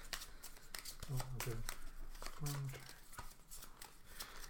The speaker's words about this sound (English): So actually, with little room on the table, I need to shuffle my deck here.